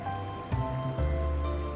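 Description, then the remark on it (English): A steady, continuous rush of water, like a waterfall, with a deep low roar that swells slightly a couple of times and no voices. “Your raft begins to turn a corner and you hear the sleepy bellow of a waterfall.”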